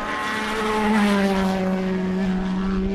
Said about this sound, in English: Those two were an Aston followed by a Peugeot. I'm standing perhaps no more than 40 foot away from the cars, just on the apex of the last turn.